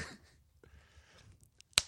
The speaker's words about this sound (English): That was my head slap.